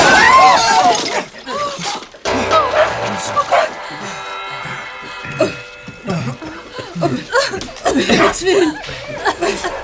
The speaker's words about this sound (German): Was war das? Die Kerze auf dem Adventskranz. Sie ist explodiert.